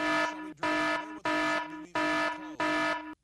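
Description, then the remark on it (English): A boat horn sound effect played on KAAM 770 radio as a trivia question cue: five loud, evenly spaced blasts of a steady, buzzy, harmonic-rich tone, each about half a second long, with short gaps between them and no talking. “Do you want to play the little boat sound thing? What do we got? The horn?”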